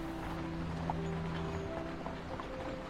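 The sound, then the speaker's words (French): Large, powerful draft horses plod along pulling a carriage over snow, their hooves falling in a slow, steady rhythm against a constant low rumble of moving wheels and harness. “Elle avance doucement au rythme des chevaux qui la tirent.”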